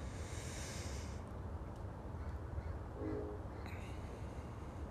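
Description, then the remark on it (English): A few birds call briefly, caw-like, at dawn as they wake up, over a steady low rumble of a passing train that dominates the scene. “Now the sky here is much lighter, and the birds are starting to wake up and starting to hear more noises.”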